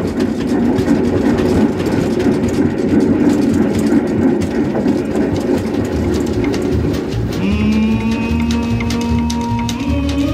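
A train engine rumbles steadily along the rails with a dense, continuous roar, then a sustained whistle-like harmonic tone rises in the final seconds. Loud, no voices.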